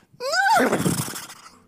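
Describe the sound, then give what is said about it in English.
A person loudly imitates a stallion's neigh: one short, strained whinny that rises, wavers, then breaks into a rough, fading rasp, with no talking. “And they were ascending a mountain, and they were letting out an almighty, like, stallion.”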